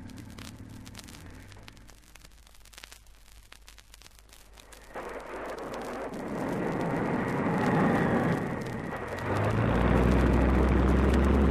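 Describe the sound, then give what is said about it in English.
A seaplane's engine roars up as it takes off from the water, starting as a low rumble and swelling into a loud, steady drone that keeps building in power, with no voices. “Give us half a minute to get clear in the dinghy, then take off.”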